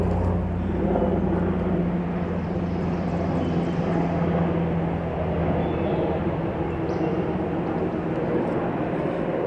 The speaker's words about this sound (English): Apparently it's not a stealthy helicopter, in case you're wondering.